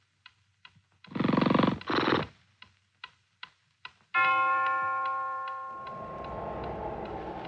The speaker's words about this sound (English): Awakening in the middle of a prodigiously tough snore and sitting up in bed to get his thoughts together, Scrooge had no occasion to be told that the bell was again upon the stroke of one.